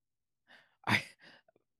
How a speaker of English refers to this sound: What, because I yawned?